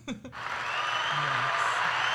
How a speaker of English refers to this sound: Just had to, like, this is just like pure 90s, like laugh tracks, fake applause. It's so good. All shows in the I 90s love were like laugh tracks.